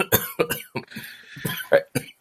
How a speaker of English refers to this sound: Sorry. The coughs for suspense.